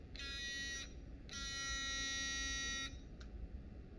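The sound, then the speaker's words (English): A harsh electric buzzer sounds twice, a short burst and then a longer one, with a brief final blip over a low background rumble. No one speaks. “Yeah, yeah, buzz. Go ahead, buzz me.”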